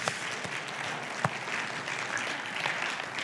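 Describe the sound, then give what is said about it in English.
An audience claps hands together in a dense, steady wash of applause that holds a fairly even level throughout, with one sharper clap standing out briefly. No one speaks over it. “I have one hand clap.”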